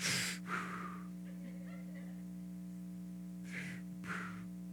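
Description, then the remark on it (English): Someone demonstrates side-of-mouth breathing: two quick, airy breaths at the start, a quiet pause, then two more near the end, over a steady low electrical hum. “You know the little side mouth breathe, you know, breathing technique?”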